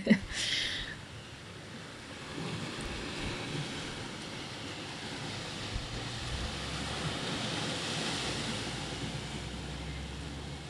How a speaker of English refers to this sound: So for a moment here, I'll just leave you with the ocean sounds, the birds surrounding, the wind.